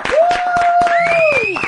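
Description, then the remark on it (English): Loud single hand claps in a steady, deliberate rhythm that grows denser toward the end, with a sustained whistle-like tone sliding upward over them. No talking. “The slow clap. She gets the slow clap.”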